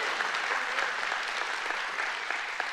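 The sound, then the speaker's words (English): A church audience applauds steadily, giving the Lord a hand clap, many hands clapping at once in a dense, continuous patter that holds at an even loudness throughout, with no voices standing out. “If you believe that today, give the Lord a hand clap, say amen.”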